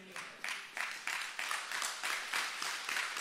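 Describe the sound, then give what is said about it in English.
A small crowd claps steadily for a few seconds, the applause moderately loud, with bursts of hand claps blending together and no one speaking over it. “Hey, I'll just take the ones that are clapping and we'll go change the world.”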